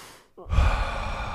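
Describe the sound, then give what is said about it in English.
A single deep, breathy breath during breathwork, moving only the belly and chest: a short faint draw of air, then a loud, airy rushing exhale released passively without force and trailing on to the end. “Passive exhale, when I reach the bottom of that exhale, then that's when I start my next breath.”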